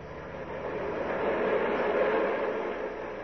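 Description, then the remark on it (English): A steady roar of a subway train in motion on the ride home from Coney Island, a continuous rumbling rattle that swells slightly midway and stays loud throughout, with no voices. “Worst part of going to Coney Island, the ride home and the subway.”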